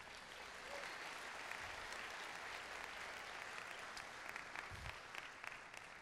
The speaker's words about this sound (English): You can clap for that.